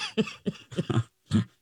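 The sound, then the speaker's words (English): A series of short, dry coughs, about four quick hacks in a row followed by a brief pause and one final cough, with no talking. “I've had a damn cough. We said this. That dry cough.”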